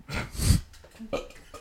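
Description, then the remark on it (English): A single loud burp rumbles for about half a second, followed by some faint breathy mouth noises and small vocal sounds trailing off. “I have so many burps.”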